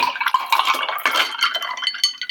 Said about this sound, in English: Then on top of ice in shaker, shake it again for 30 seconds. And again, we'll just pour this straight from the shaker into your glass, garnish it with rosemary, a cherry, and your orange slice.